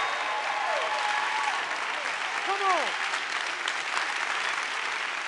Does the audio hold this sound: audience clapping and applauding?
yes